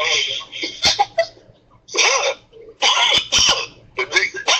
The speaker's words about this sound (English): Sound like you're eating hot wings and coughing.